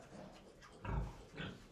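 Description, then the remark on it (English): A pig gives two short, low grunts about half a second apart, the first deeper and louder, set against a quiet background with no talking. “they could not speak that language themselves, but had to talk in their own way.”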